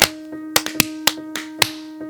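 Several sharp hand claps ring out at an uneven, loose rhythm, some louder than others, over a faint steady hum. No one speaks.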